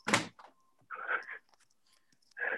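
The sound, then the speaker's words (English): A door is shut, swinging closed with a sharp thud, followed by a couple of softer scraping, rattling bumps as it settles into the frame. No one speaks. “I'll just shut that door very quickly.”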